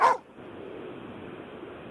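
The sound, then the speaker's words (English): A single sharp dog bark bursts out loudly at the very start, then fades into a low, steady background hiss for the rest of the moment. “what breed of dog do you reckon this bark belongs to?”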